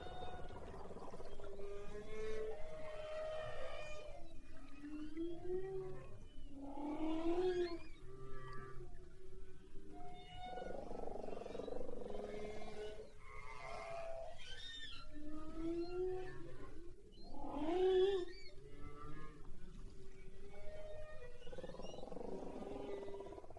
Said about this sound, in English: Let's listen to this recording of the humpback whale.